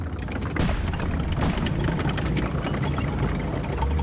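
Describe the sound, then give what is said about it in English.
A dense barrage of mortar and artillery fire opening up across the 38th parallel in Korea at 4 a.m. on June 25th, 1950: rapid, overlapping blasts and sharp cracks over a constant heavy low rumble, loud and unbroken for the whole stretch, with no voices. “on June 25th, 1950, the land of the morning calm was shattered by the sound of mortars and artillery opening up across the 38th parallel that divides Korea into north and south.”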